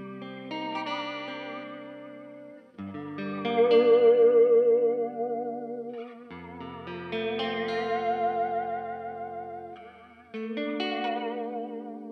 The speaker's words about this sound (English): How's that for weird? That is the Electro-Harmonix Holier Grail reverb pedal. It's the big form factor boy.